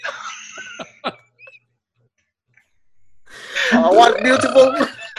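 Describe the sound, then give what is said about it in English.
A loud, rasping fart noise blurts out for about two seconds, coming after a few short whistly tones and clicks and a brief silence. “Now fart. Fart in my flute.”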